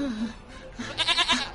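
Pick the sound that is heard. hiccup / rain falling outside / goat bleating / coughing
goat bleating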